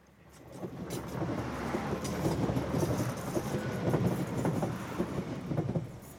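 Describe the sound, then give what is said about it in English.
A train rumbles past on a railway line beside a churning sea, a loud, steady roar with scattered rhythmic clatter from the wheels. It builds quickly in the first second and stays strong throughout, with no voices. “She brings me to a narrow path between a churning sea and a railway line.”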